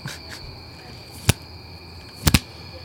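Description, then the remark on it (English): A sticky hand toy slaps three times: one sharp smack, then a quick double slap about a second later, over a faint steady high-pitched insect-like drone. “That's what you hear, my friends, the sticky hand.”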